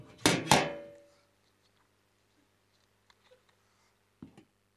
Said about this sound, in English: So I'm just going to take a swig of water.